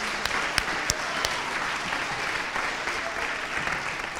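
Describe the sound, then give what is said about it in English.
Sustained applause from an audience, dense steady clapping at an even level, with a few sharper individual claps standing out near the start. “I want to give these guys one more round of applause.”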